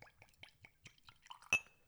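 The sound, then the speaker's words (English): A drink glugs out of a freshly opened corked bottle in a normal pour, in quick, uneven bursts, fairly quiet, ending with a sharp glassy clink that rings briefly. No one speaks. “That's a normal pour.”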